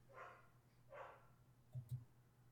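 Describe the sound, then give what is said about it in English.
A dog named Zatanna barks twice, about a second apart, fairly faint and with no one speaking, followed by a couple of soft low thuds. “Well, awkward sound of dog barking in the background.”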